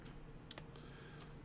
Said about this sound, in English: Let me look this up. Hold on. You guys hear my typing here. Get to hear all my ambient noises today.